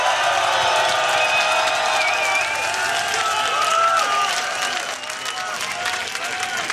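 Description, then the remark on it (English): A large festival crowd at Decibel roars with sustained cheering and applause for a band, hands in the sky, dense clapping crackling throughout, high whistles and shouts rising above the steady wall of noise, which dips slightly near the end. “Each and every single person, hands in the sky, and make some fucking noise.”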